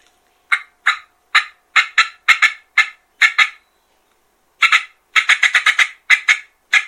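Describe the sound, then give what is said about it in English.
A turkey call imitating cutting: loud, sharp, high-pitched clucks popped out in rapid, irregular bursts, with a brief pause midway before a faster flurry. No one talks. “So if I'm going to cut, I'm obviously going to pop it 1-2, 1-2.”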